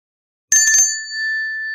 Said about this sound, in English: Wait, that's a bell, isn't it? And if I ring it, you're bound to come? Well, yes, that's so in a way, but you can never be sure about that bell. There's something wrong with the wiring, and it doesn't always work.